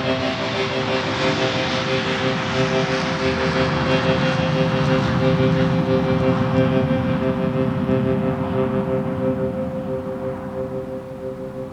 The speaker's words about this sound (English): I lay on the sidewalk, knee in my back, and I heard Jenny's plane to Seattle take off.